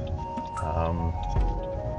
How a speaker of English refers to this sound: All right. Well, so this is my second episode of Drive Talk. As I drive in my car and I talk.